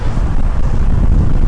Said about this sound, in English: it's pretty windy out today.